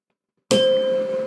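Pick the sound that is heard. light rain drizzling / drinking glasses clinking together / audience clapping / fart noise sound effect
drinking glasses clinking together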